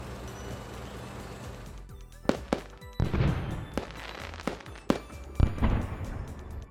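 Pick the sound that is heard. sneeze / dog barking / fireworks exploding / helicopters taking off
fireworks exploding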